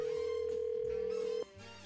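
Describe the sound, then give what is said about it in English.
A telephone ringback tone sounds as a call is placed to a woman: one steady, fairly loud electronic ring that holds for under a second and a half, then cuts off, leaving quiet line noise. “to find out if that speeding scared her a little bit here as we dial her up.”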